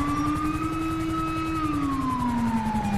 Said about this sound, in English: Here comes ambulance. Fire's uphill. There's ambulance.